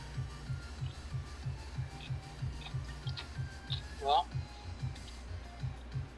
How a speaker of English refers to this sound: Are you munching? Yeah, I'm sorry. No, I mean, it's fine. I'm like, what you munching on, though? Some Doritos, as my nephew would say. them Tapatio Doritos.